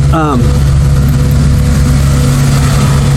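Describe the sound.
A street sweeper drives past, its engine droning loud with a steady, low, rumbling hum that holds for several seconds. A brief voice sounds at the very start.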